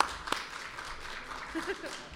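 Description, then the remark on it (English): Audience applause as a guest is called up to the stage forms a soft, steady wash of clapping with one sharper clap standing out early, faint murmuring voices mixed underneath throughout. “Give him a round of applause, yeah.”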